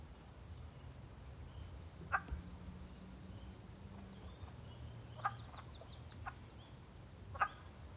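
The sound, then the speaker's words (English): Wood frogs calling at a pond: scattered short, hoarse clucking croaks, a few standing out louder than the rest, over a steady low rumble with no voices. “The wood frogs were first. Their call is that nyuk, nyuk, nyuk.”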